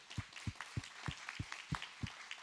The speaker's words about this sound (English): All we do is we just want to give you a round of applause. So for our first-time guests, can we welcome them?